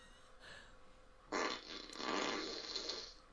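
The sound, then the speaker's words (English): A single drawn-out fart sound effect, raspy and sputtering, played by an Alexa smart speaker after being asked for a random fart, lasting about two seconds after a brief quiet lead-in, fairly loud with no one talking over it. “That was a gassy one.”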